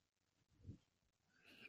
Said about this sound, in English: Damn, you breathing hella hard. You good? You straight?